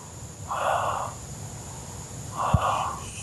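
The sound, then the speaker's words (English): A dog at the Red Bank National Park breathes in slow, noisy snorts, two broad raspy blasts about two seconds apart over a faint steady hum, with a small sharp thump during the second. “You just listen to him breathe.”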